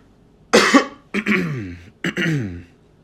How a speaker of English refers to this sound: Excuse me, it sounds so bad doing audio and you guys having to listen to me cough and make a bunch of noises. So I'm sorry about that.